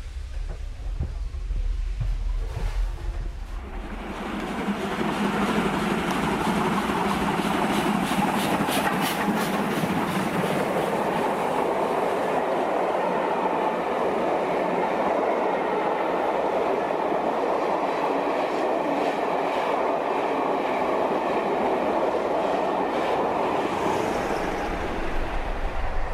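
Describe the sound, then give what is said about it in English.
A passenger train with dining passengers aboard rushes along the rails at about 70 miles an hour, just setting off from Hereford on a warm, clouded-over day: a loud, steady roar with rattling and rhythmic clicking of wheels. “I would think that the train's doing about 70 miles an hour at the moment.”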